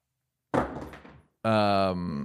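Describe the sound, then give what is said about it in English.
A voice performs a live swoosh sound effect: a loud, breathy rushing burst, a brief pause, then a sustained buzzing voiced tone that holds steady for nearly a second. “Well, a live swoosh. Usually does them in post.”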